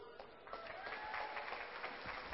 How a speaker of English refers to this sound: Wow, I haven't even shared, and you guys are clapping. That just shows you how amazing she is.